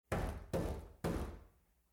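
A cat named Yoda bangs its head against a door three times in steady succession, producing dull, resonant thuds that ring briefly and fade. Fairly loud, with no voices.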